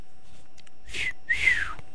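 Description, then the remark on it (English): Two short, breathy puffs of air, someone trying to whistle; the second burst briefly catches a thin, wavering tone before fading out. “wonder where that whistle started.”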